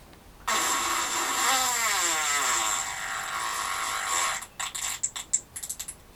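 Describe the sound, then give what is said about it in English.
A long, buzzing raspberry-like blast with wavering, sliding pitch, made by mouth to imitate a fart, followed by a series of short sputtering bursts. No one speaks. “What would be the point of a world without fart jokes and fart sounds?”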